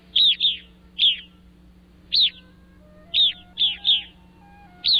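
An evening grosbeak, a songbird, giving short, buzzy chirps, about nine of them in irregular pairs and singles, loud, with a faint steady hum underneath.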